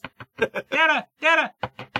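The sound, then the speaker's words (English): A voice imitates knocking on a door at 3:30: quick, clipped vocal bursts in a rapid series, broken up by two longer, drawn-out sung-sounding calls, all fairly loud. “So 3:30 rolled around and he's like, you know, on my door.”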